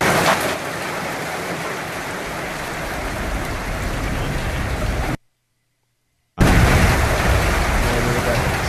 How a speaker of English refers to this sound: Is rain on a tin roof the greatest sound nature provides us? Yes. Okay, they got it right.